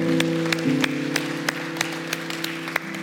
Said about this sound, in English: Can we give these 5 individuals who raised their hand a huge round of applause? Yeah.